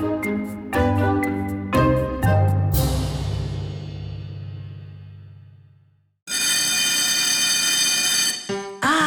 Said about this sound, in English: Bell telling us Hebrew school is over. I shall miss its tinkling sound.